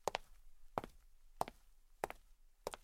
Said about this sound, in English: the fat man's footsteps could be heard walking over to him.